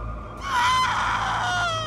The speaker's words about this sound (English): She screeched for what must have been an eternity. I couldn't believe a sound like that could be made by a human throat. It chilled me to my core.